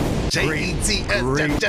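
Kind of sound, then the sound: sound effect, bomb explosion sound effect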